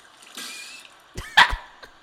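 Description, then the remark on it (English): A short burst of water rushing from a faucet, followed by a few sharp clunks and a brief squeaky tone, with no voices. “It was like a faucet turning on.”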